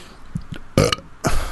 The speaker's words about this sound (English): Please don't burp.